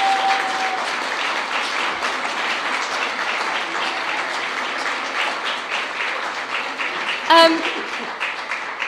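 An audience at a morning worship service applauds steadily for several seconds to welcome visitors from the Boaters Christian Fellowship, Canal Ministries and the Waterways Chaplaincy. A dense, even wash of clapping from many hands fills the room, with a brief bright tonal blip near the end.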